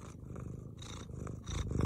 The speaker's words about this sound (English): Is this a Mio? I thought we were going to get a Mio on that. Yeah, no. Those are those weird talking cats.